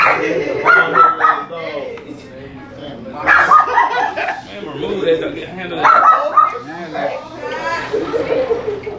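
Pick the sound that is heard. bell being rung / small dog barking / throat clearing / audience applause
small dog barking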